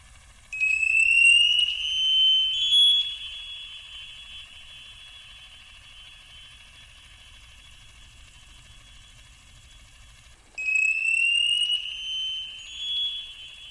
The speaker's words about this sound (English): We have some audio here. Let's hear some Navy sonar.